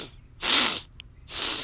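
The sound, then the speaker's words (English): Two short, breathy sniffles separated by a brief pause with a faint click between them; no one speaks. “Weird sniffle sound.”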